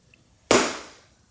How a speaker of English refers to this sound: It was more of a thud. More of a thud than a clap.